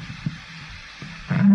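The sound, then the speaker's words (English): An electric cooling fan runs in a studio with a steady, low whirring hum and an even breathy hiss, a couple of soft knocks breaking through before a louder voice-like tone rises at the very end. “I've got a fan on.”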